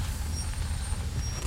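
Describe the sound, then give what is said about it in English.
A car that has lost power slowing to a stop on its parking brake, heard as a steady, low road-and-engine rumble with a faint high hiss above it and no voices. “I'm gonna try the parking brake. Alright, this could get bumpy. Okay, alright, we're slowing down.”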